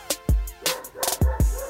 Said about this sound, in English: It's 1:34 a.m. I'm trying to record a podcast and this dog keeps barking. Ugh!